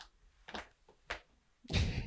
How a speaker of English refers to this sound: I don't know if the audio picked that up, but my cat's just clawing this. Yeah, we got a little bit of it. Expensive white chair.